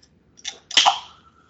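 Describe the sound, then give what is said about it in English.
A Diet Coke can cracks open: a small click, then a sharp, louder pop followed by a short hiss of escaping fizz that fades within half a second. No one speaks. “I have a Diet Coke. I'm going to open it with a crack.”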